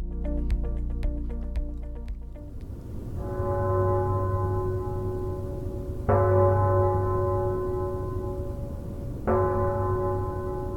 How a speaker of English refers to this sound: I use that clock all the time. Yeah, it wakes me up in the morning too, because you can hear the 6 o'clock chime. Yeah, I think it's a beautiful building. I grew up in here, and it's always been a staple of anybody who lives in Toronto.